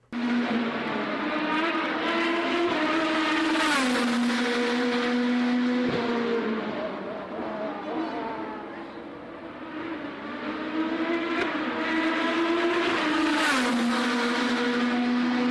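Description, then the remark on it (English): Race cars at the Honda Grand Prix of St. Petersburg roar past on a street circuit running through a neighborhood, heard from a back door, their high engine whine sustained and loud, pitch rising and falling as cars sweep by, easing briefly mid-clip before surging again. No voices. “Our own Kevin Godby had a little bit of racing going on around his neck of the woods, and this is kind of what it sounded like from his back door.”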